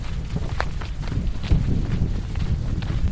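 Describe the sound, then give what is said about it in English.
Footsteps crunch along at a steady walking pace outdoors as a person leads the way through a metal fence into a planted parcel of young acacias on Senegal's Great Green Wall in the Sahel, several distinct steps over a low rumble of wind, with no voices. “leads the way through the fence to inspect this small section of Senegal's Great Green Wall.”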